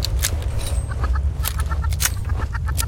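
An angry enemy chicken in a video game squawks and clucks in quick, repeated bursts, loud, over a steady low rumble with sharp crackling hits mixed in.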